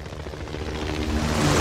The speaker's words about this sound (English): it starts off with a helicopter on rails, kind of quick time sequence, I guess. Where you're just on a helicopter shooting at a bunch of enemy helicopters in a storm. High octane, high adrenaline.